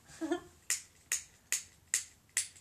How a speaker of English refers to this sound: That's my lighter clicking because we got a lighter blunt every time we start a podcast.